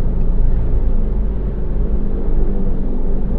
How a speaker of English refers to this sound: I'm going to let these planes pass over.